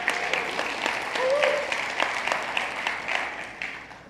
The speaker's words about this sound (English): She deserves a round of applause right now.